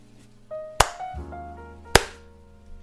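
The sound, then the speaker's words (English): Two sharp, loud hand claps roughly a second apart, each a crisp snap that dies away quickly over a faint, steady background hum. No one speaks. “Can I do my claps?”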